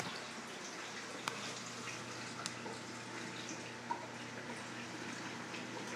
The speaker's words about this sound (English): Pretty sure water is coming down.